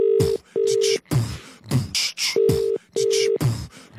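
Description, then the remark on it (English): Four steady electronic beeps from a telephone keypad as a toy shop in Bury St. Edmunds is dialed, each under half a second, sounding at an uneven pace with bursts of noisy handling sound between them, fairly loud. “Let's phone them now.”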